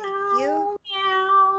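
A cat meows twice in quick succession, the first call rising and bending in pitch, the second steadier and drawn out. Both are loud, with no talking.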